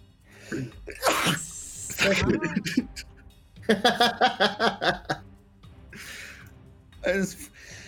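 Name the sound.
repeated sneezing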